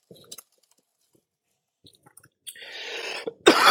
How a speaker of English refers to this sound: Oh, God. I still am dealing with my asthma cough. Some days are better, some days are a lot harder.